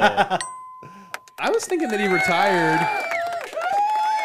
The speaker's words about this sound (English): People are cheering for me. Please wait.